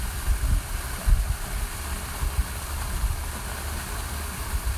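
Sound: waterfall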